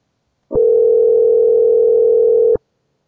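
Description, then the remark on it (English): An unanswered phone call rings once through the earpiece before voicemail picks up: a steady electronic purr lasting about two seconds, fairly loud and alone with no voices, then stopping abruptly. “Too smart to answer that phone call.”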